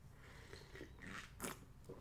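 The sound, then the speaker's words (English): Quiet mouth sounds of someone sipping coffee: a few soft slurps and wet clicks, with a brief louder slurp near the end and no talking. “A little sip of coffee for all y'all audiophiles out there. Just having a quick sip of coffee.”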